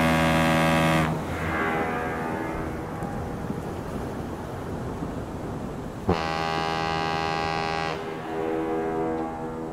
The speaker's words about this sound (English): Blowing the foghorn for? Testing it. It works.